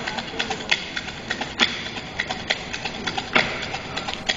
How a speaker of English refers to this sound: This is not hand boning. That's not hand boning. That's fucking black colleges. Stomp. That's stomping the yard. That's what that is.